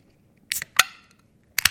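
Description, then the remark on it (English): A few sharp clicks, then a loud crack with a short fizzing hiss trailing off as a second beer, Summer Snow, is opened, followed by two more quick clicks. No voices. “Oh, well, I'm going to grab another glass, and I'm going to open the second one.”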